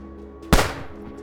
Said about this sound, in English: On February 12, 1948, Haig drove Archie Henderson to his workshop. The moment the door closed behind them, Haig shot Archie in the head.